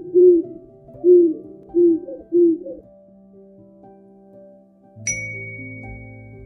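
An owl hoots four times in a steady, evenly spaced series, deep in tone. After a pause, a bright chime-like ding rings out over a low hum.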